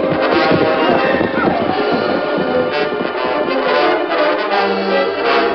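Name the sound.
horses galloping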